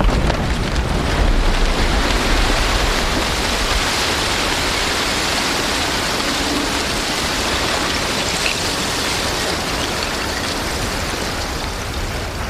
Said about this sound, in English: its final collapse, and then a whole range of baseball, softball-sized pieces of ice spraying all around me, at which point I was diving for cover and just making sure the microphone was still working, hoping not to get hit.